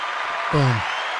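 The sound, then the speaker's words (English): Steady clapping fills the whole moment, a dense wash of applause, with a short voiced shout or cheer rising briefly over it midway. “Round of applause for Des.”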